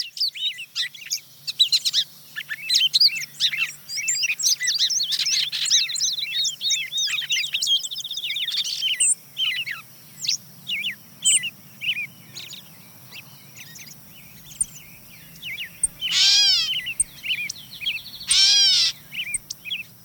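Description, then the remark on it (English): A busy dawn chorus: a wood pewee's slurred whistles, a song sparrow's bright trills and a gray catbird's jumbled chirps overlap continuously, clear, with no voices. “Yeah, the wood peewee comes in, followed by the song sparrow and gray catbird.”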